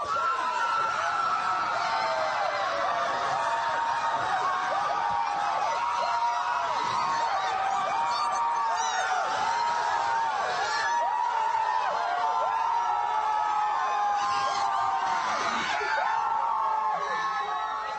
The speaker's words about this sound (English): There's a huge crowd gathering here, some celebrating, some going crazy. We just got the news.